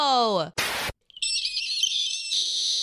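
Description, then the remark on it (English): A quick falling vocal swoop and a short burst of noise give way to a long, piercing, high-pitched squeal that holds steady and loud for over a second. “Yeah, I heard my squeal.”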